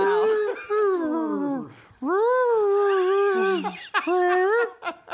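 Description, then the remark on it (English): A human voice imitates whale song with long, wavering moans that swoop up and down in pitch, sung in three drawn-out phrases, fairly loud, with short breaths between. “I'm sorry, did that whale just ask, "Are you close?"”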